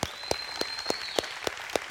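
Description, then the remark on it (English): Audience applause at a church for the pastor and his wife, in a steady rhythm: about seven sharp, evenly spaced claps over a faint continuous high-pitched tone, with no voices. “If you love your pastor and his wife, would you just give them a big round of applause?”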